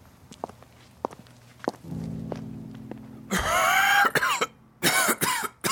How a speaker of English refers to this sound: Ooh, that cough is something.